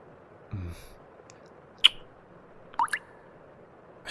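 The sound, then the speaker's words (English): A few separate drips of water from a leaking ceiling land at uneven intervals, sharp little taps against a quiet background, with a faint low thud early on. No one speaks. “God, is the ceiling leaking again? Water keeps dropping through every time it rains.”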